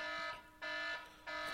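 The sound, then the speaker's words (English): A fire alarm blares during a fire drill in loud, repeating bursts: a harsh, buzzy electronic tone rich in overtones that cuts off and restarts about every half second, with no voices. “And we're back after the fire drill.”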